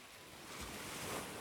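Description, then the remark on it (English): Rough ocean surf whipped up by the Meltemi wind roars steadily, a broad wash of breaking waves that swells slightly louder midway, with gusty wind mixed in and no voices. “With the Meltemi waves today, they didn't have a chance.”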